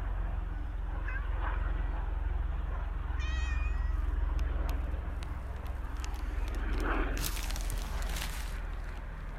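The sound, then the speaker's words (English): A female cat lets out a short, high meow, with another fainter mew, outdoors on a sunny day over a steady low rumble of a plane, plus scattered clicks and rustles. “So I've now found out the cat's okay. So I was just checking on her well-being.”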